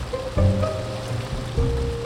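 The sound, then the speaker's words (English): A creek in a park runs steadily downhill alongside the path, eventually feeding into a lake: a continuous rushing wash of water with a low, faint hum underneath and no voices. “If you look at the creek running alongside us, it's practically an optical illusion.”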